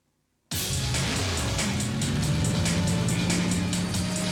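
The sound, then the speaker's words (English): A game controller vibrates hard: a loud, steady low buzzing rumble kicks in abruptly after a brief silence and holds for about four seconds with a slight wavering pitch, no talking. “I'm sorry if you can hear the controller vibrating too. It's vibrating like really hard.”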